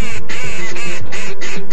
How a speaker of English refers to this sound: Wood duck.